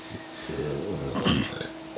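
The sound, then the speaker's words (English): A single drawn-out burp, a low croaking belch that swells midway before trailing off, heard on its own without any talking. “Burp.”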